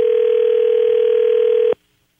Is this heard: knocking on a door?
no